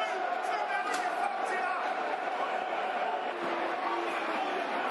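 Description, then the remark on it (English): A football stadium crowd at a Millwall versus Ipswich match roars in a dense, continuous wall of massed voices, holding steady and loud throughout with no single speaker standing out. “Crowd into this now, as you can hear.”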